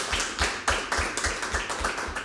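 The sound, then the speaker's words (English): Audience applause: a dense, crackling wash of many hands clapping at a steady, fairly rhythmic pace, holding an even moderate loudness throughout with no voices over it. “A big round of applause for David.”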